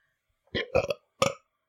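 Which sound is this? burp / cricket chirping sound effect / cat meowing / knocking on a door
burp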